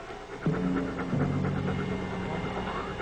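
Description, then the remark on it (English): A dog pants in quick, steady breaths, with a low droning whine running beneath the rhythm and no talking. “He understands what the dog's saying.”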